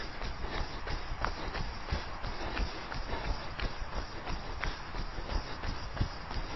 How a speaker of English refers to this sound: A horse.